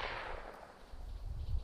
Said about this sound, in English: That's the fourth gunshot.